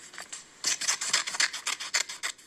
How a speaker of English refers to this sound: it's someone cutting paper. Oh, okay, somebody cutting paper.